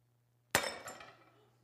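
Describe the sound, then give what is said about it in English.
A single sharp crash as a clay pot smashes, followed by a second smaller burst and a brief scatter of rattling shards that fades out over about a second, over a faint low hum. “This thing about clay pots, though, life is hard on them. Life throws a lot of things at clay pots.”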